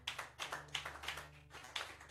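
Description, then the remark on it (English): An audience gives the Lord a clap of faith during a sermon, clapping together in a steady, fairly quick rhythm, many hands slapping in broad, bright bursts over a low constant hum, with no voices. “Give the Lord a clap of faith.”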